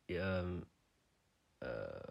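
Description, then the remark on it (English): Two loud, buzzy fart noises made with the mouth, a half-second blurt, then a short pause and a second, rattling blast that cuts off abruptly. “I just like a fart noise.”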